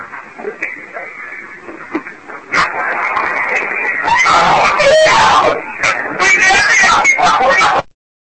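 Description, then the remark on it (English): In a recorded ghost-hunting clip, a harsh, anguished scream bursts out of quiet, muffled background noise right after two questions are asked, and holds loud and distorted for about five seconds, wavering in pitch before cutting off abruptly. “He asks these two specific questions, and you hear this horrific, like, tormented scream come through.”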